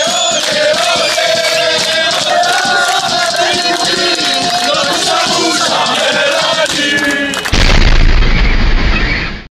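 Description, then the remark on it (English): A crowd of young Israelis in Tel Aviv sings and chants loudly in celebration for several seconds. It is cut off by a sudden heavy explosion from the bombing of Gaza, a deep roaring blast that rumbles on through the final two seconds. “And so I thought back to that horrible day watching a scene at the beginning of your film showing also something horrible, this devastating bombing of Gaza on the one hand, and then in Tel Aviv, crowds of young Israelis celebrating.”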